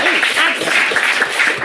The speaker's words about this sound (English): I want to give you, like, I know you lost your job, but can we just give you a round of applause?